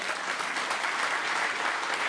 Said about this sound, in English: Okay, I got to applaud that one. That was pretty good.